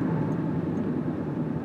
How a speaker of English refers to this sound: Get off my butt, you Dodge Ram. You jerk. Your truck is spray painted black.